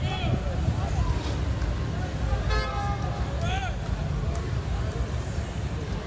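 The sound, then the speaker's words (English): A dense outdoor crowd filling the streets to celebrate an Astros win roars with overlapping shouts and cheers while car horns honk in short bursts above the steady, loud din. “Just streets filled with people just everywhere.”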